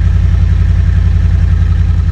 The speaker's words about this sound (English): I drove an SUV whose exhaust system sounds like it's come partly or almost entirely loose,